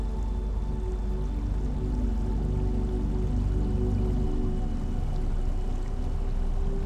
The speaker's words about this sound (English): Let the melody of the water soothe you.